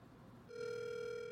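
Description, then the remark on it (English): A steady electronic phone tone starts abruptly partway through and holds evenly to the end, clear, after a moment of quiet background. No one speaks. “Answer the phone. I need you.”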